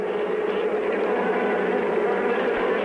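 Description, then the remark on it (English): A dense, steady drone of a large swarm of bees buzzing together at a hot dog stand, loud, a continuous layered hum with no pauses and no one speaking; the beehive is about 10 feet long. “Boy, are they buzzing. They are busy bees.”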